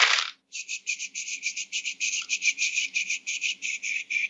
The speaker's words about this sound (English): Alright. So I roll all of these dice. Hang on.